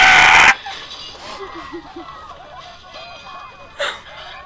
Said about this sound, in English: Why does it sound like a pterodactyl? Hey, look, a chicken.